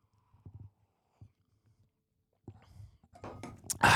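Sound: sipping coffee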